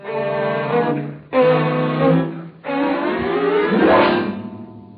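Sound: car engine driving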